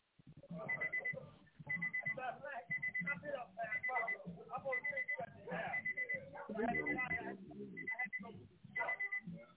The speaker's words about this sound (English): We can hear you and your alarm in the background, caller. Call back in.